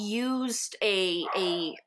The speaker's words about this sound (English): anyone leaves my house for 10 seconds, they're barking. And then my 15-year-old Yorkie is just going off.